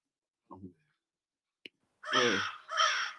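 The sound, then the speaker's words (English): Two loud, harsh crow caws sound in quick succession, preceded by a short soft vocal sound and a single sharp click. “Why are you giving me crows?”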